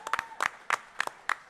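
Scattered audience applause at a live Boston Real Estate Show event at Net Divines, for the event's organizers: sharp, crisp claps arriving in uneven bursts over a faint background, fairly loud, with no one speaking.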